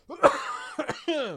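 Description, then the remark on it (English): A person coughs and clears their throat, a rough burst followed by two quick hacks and a strained, voiced rasp that trails off, with no talking. “Before I absolutely destroy myself by coughing, let's get into some news.”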